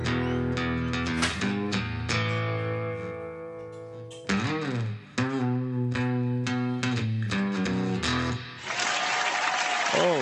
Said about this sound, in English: We have the greatest fans here at Live from the Dutch Hall. They always cheer so nicely for me, and they always give me great feedback.